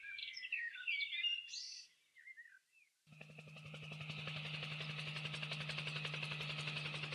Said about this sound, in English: Say, that sounds like one of them helicopter gizmos.